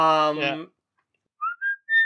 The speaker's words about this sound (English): This whistle hook, it's just so perfect.